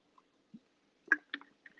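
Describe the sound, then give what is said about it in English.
Someone takes a drink of water: a few short, soft slurping and gulping bursts with small liquid clicks in between, quiet overall and with no talking. “And normally, excuse me, I have to take a drink of water.”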